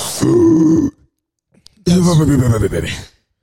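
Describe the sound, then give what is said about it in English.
A voice loudly imitates a person snoring on a couch, with two long, rough, rumbling snorts separated by a short pause, forceful, with no other sounds around them. “will be snoring on the couch, bro.”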